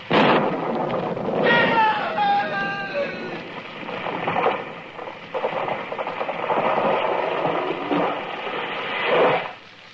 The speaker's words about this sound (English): It was lightning. It struck the tree.